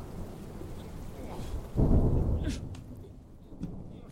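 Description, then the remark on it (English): Steady rain hisses throughout while a deep roll of thunder swells up midway, rumbling loudly for about a second before fading back under the downpour. “Sherlock Holmes as he made me climb a 10-foot brick wall in a storm, except to note that none of them were in any way complimentary.”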